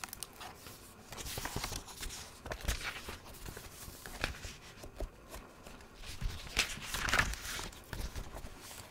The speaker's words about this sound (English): like book page turning. Or notebook page turning.